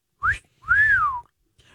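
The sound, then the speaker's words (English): A classic two-part human wolf whistle: a quick rising chirp, a short pause, then a longer tone that swoops up and glides back down. It's fairly loud and clear, with no talking. “What whistle would you respond with?”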